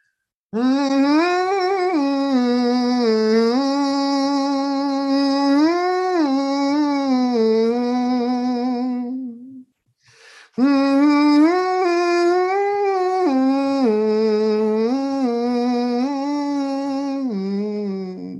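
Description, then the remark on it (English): A person hums a steady melody alone, the sustained voiced tone stepping up and down in pitch, with a brief pause for breath midway before the tune resumes at the same even loudness. “So for those who don't know the English word hum, it's when you go, who could do a hum for us.”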